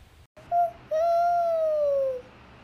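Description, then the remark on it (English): An owl hoots twice: a short note, then a long, drawn-out call that slowly falls in pitch. It is clear, with a low background rumble and no talking. “So, I think I see an owl. I don't see one, but I hear one. There it is.”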